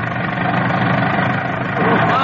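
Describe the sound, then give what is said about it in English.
An old jalopy car engine runs steadily with a rough, rattling drone, holding at an even loudness throughout while voices talk over it, as the car is driven in pursuit of an ambulance. “If this jalopy holds together, you mean? Who would draw a coffee grinder like this in a pinch”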